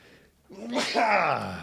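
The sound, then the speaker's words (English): A single loud sneeze: a short voiced intake rising into a sharp, noisy burst, trailing off in a breathy, pitched tail. No talking, just a faint hum before it. “Bless you.”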